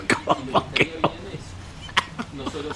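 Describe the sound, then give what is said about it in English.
A loud run of about five rapid coughing bursts in quick succession, followed by a brief pause and a few softer, scattered throaty sounds. “If the show was being broadcast on radio, you wouldn't get a cough like that.”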